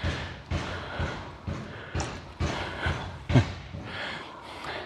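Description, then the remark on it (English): A steady run of hammer blows, about ten strikes at roughly two per second, each a dull, resonant thud, as a neighbour next door hammers out a dent in his garage, with no talking. “So I think that's him hammering out the dent in the garage.”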